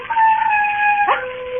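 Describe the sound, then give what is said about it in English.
A wild dog on the moor howls in a long, sustained wail that holds steady, then breaks and drops sharply in pitch near the end. It sounds fairly loud, with no talking. “There are wild dogs on the moor. Sometimes they bay and howl.”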